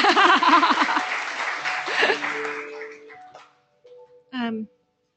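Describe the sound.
A crowd claps loudly for about three seconds for the man who hosted the visiting speakers at his house, with voices calling out over the applause, before it tapers off; a brief spoken sound follows after a pause.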